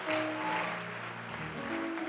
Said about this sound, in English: Come on, church. Let's keep clapping. Let's rise to our feet.